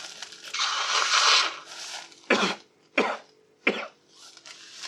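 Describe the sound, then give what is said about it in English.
A long, breathy nose blow into a tissue, followed by three short, sharp coughs spaced evenly apart, with no talking, done as a step before collecting a test sample. “Then take a tissue and I'd like you to blow your nose and cough 3 times.”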